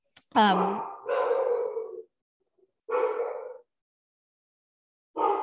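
Dogs barking in four drawn-out, tonal bursts, the first rising sharply in pitch, with short silent gaps between them and no talking.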